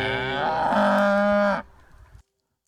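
A single long, loud cow moo, rich with harmonics, lasting about a second and a half before cutting off into a brief low rumble and then silence.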